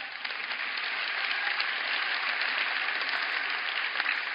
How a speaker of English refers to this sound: Wow. So we get applause. Oh, way to go.